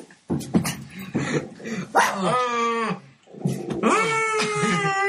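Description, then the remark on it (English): A female cat yowls: a few short rough bursts, then two long, wavering caterwauls with a strained, nasal tone, separated by a brief pause. “All cats are girls. She's goffed again.”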